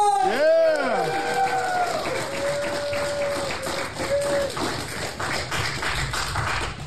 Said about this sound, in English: So let's just skip ahead to Dat Phan. Now let's hear the ovation he gets when he comes on stage. So are you guys ready for your headliner for tonight?